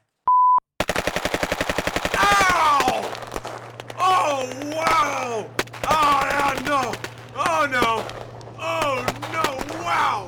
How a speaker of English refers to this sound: So you're gonna hear a few gunshots.